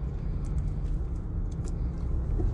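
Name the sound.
car traffic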